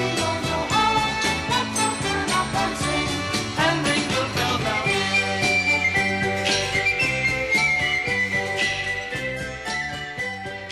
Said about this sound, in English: Shout out to the penny whistle. I just used to play the penny whistle.